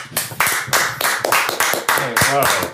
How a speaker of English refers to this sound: I feel the clap just now.